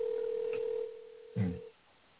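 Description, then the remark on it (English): A steady, continuous telephone dial tone hums on a thin phone line after a call is disconnected, then a brief rumbling clatter interrupts before the tone cuts off into near silence. No one speaks. “I got disconnected again.”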